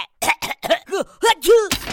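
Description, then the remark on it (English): Kapow, a character made of tools, sneezes out a wrench and two number 9 bolts: a string of strained, voiced huffs swooping up and down in pitch builds into a loud, breathy sneeze-like burst, with no talking. “I sneezed a wrench.”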